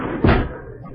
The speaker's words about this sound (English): Wait, I'll close this door.